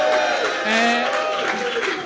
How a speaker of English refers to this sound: Hey, one more cheer so we know there's someone here, please.